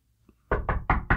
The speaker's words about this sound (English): Why are you knocking so hard?